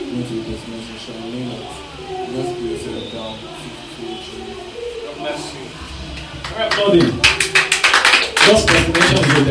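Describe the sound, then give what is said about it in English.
Voices murmur for several seconds, then a crowd breaks into loud, dense applause that builds over the last few seconds, rapid overlapping claps. “Let's applaud him as he wants to.”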